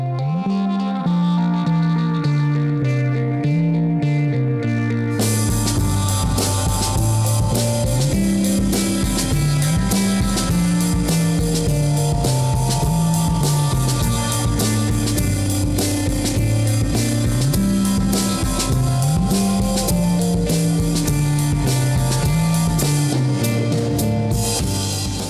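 A bass-driven groove plays alone, then after about five seconds loose, lo-fi drums recorded in an open setting kick in with a constant background hiss, giving the loud mix a rough, not-crisp texture throughout.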